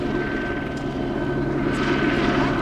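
An EMS air ambulance helicopter circles above a crowd at the historic fort in Fort Scott, waiting to land; its rotor chop and engine rumble fill the air at a constant, fairly loud level for the whole stretch, with no voices.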